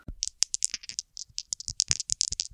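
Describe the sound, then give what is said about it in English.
A short, homemade transition bumper sound effect introducing a session summary segment, made of a rapid, rattling flurry of sharp clicks and taps, dense and uneven in rhythm, crisp, with no one talking. “So let's do the session summary, Bumper.”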